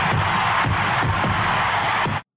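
A huge baseball stadium crowd roars and cheers as Henry Aaron hits his record-breaking 715th home run, with fireworks going, in a dense, continuous wash of noise, loud and sustained throughout before cutting off abruptly.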